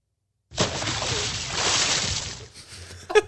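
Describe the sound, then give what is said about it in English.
A splash sound effect played from a programmed sound button for jumping into the inbox: a sudden watery burst that churns and sloshes for about two seconds, loud and noisy, then trails off into a short, softer tail. “So what are we doing, Tyler? Splash. We're jumping into the inbox.”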